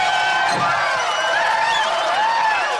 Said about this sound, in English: And that sound effect pretty much does characterize the Long Island crowd.